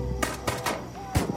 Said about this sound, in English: In the distance, more gunshots.